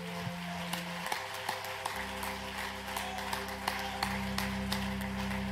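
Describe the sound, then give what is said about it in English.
An audience claps their hands to the Lord in the morning, a loose scatter of sharp claps over sustained low keyboard chords that shift a few times. Nobody speaks. “Can we clap our hands to the Lord this morning?”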